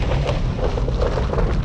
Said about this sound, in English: Rowan raised her hand into the air and clapped her hands together. There was a mighty crack of thunder. The room about us began to shake as if in the grip of an earthquake.